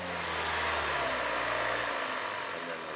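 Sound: car engine accelerating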